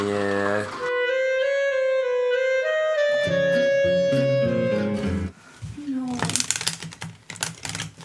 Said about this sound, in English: shuffling top trumps. We're going to play a little bit of Elements top trumps.